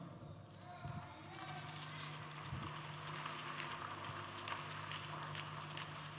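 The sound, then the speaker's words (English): A crowd claps together during a sermon in a dense, crackling wash of sound that holds steady for several seconds, fairly soft, with a low hum and murmur underneath. “Your clapping is very suspicious.”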